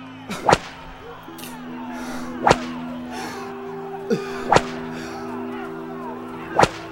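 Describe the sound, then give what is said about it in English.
Four sharp, loud whip lashes strike a man's back at a steady pace, roughly two seconds apart, with a fainter snap between two of them, over a low droning hum; Roman soldiers are whipping him. “They continued their joke by dressing him in purple before hitting his back with whips.”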